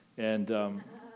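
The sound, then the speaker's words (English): A person's voice imitates a goat's bleat in one wavering, nasal cry lasting under a second, loud, with a slight break in the middle before trailing off. “That's my best attempt at impersonating them.”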